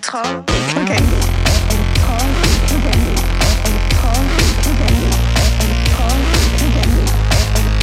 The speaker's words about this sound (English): That was mixed, what do they call it, like a distortion pedal kind of thing called, I think it's the Fuzz Factory, and just sort of like ran our synths through that. It sounded amazing